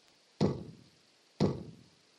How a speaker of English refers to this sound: Knock, knock.